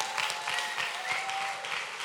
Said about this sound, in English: If you receive that, clap those hands one more time and rejoice.